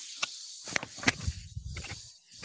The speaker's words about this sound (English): Someone, like, chewing on a snake? I think he might have just, like, put the teapot right up there. No, I was filling up the kettle. Sorry.